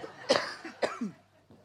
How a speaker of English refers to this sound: I hate coughing in front of people, especially these days. It's kind of not the thing to do. I'm sorry. I'm going to have a big cough.